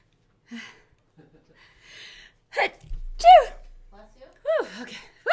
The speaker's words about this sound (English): I'm sorry, I'm going to sneeze. hang on. Bless you. Thank you. I'm going to sneeze again because I always do.